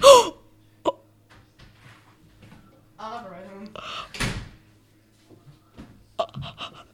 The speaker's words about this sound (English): Bro, man just slammed the door.